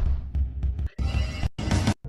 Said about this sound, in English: Blow your air horn.